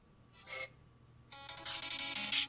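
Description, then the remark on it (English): A phone ringtone plays a bright, electronic video game tune, music from the Mega Man games, starting with a short tonal blip, then a steady melody that grows a bit louder, with no talking. “That's my ringtone currently.”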